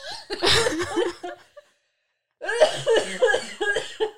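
A loud fit of choking coughs comes in two ragged bursts separated by a brief silence, with strained, gasping breaths mixed in and no speech.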